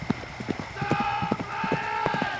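horse hooves clip-clopping

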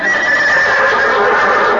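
horse whinnying

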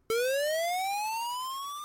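censor beep tone

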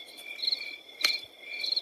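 crickets chirping at night

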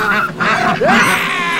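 ducks quacking

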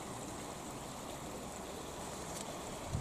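small waterfall flowing

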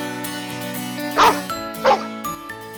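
dog barking excitedly

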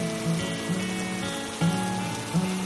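rain falling

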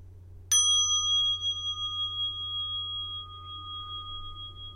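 bell ringing

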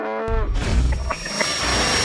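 cow mooing sound effect

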